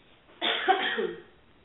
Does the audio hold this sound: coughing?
yes